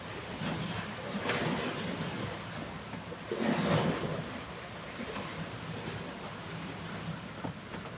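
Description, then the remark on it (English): Waves of the big lake Gitchigami wash ashore in the morning at sunrise in steady, broad surges, with a fuller swell cresting midway and a constant hiss of surf between, heard alone without any voices. “Let's take a moment, feel into the sounds of the waves.”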